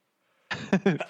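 A single sneeze erupts after a moment of quiet, a sudden breathy burst running into a short voiced tail, fairly loud and heard on its own.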